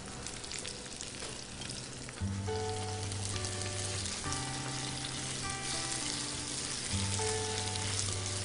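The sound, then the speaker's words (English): Zucchini with a crushed, chopped garlic clove sizzles steadily in a frying pan, a loud crackling hiss with a low hum underneath that swells slightly partway through. “And into the pan with the zucchini we go.”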